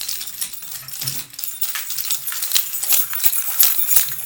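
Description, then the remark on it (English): Keys jingle and clink continuously for several seconds, a bright metallic rattle with irregular little jangles, fairly loud, with no talking. “Oh, wait, guys, you hear that? Hear what? Hey, jingle keys?”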